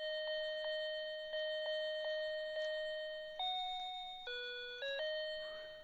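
A bright, bell-like chime plays the opening of Jingle Bells: six quick strikes on one note, then a short climb through other notes, each tone ringing clearly and fading, with no voices.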